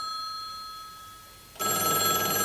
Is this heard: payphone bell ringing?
yes